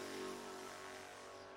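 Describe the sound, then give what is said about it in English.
The engine of the DragonSpeed number 81 race car drones past as it comes in, with a steady, buzzing pitch, fairly loud and constant throughout, easing off slightly near the end. No voices are heard. “As in comes the Dragon Speed number 81 car.”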